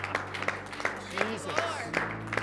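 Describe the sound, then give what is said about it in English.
Steady rhythmic hand clapping from an audience, sharp claps landing about three times a second, with voices calling out and a low hum underneath. “Clap your hands, all you nations, and shout to the Lord with a voice of triumph.”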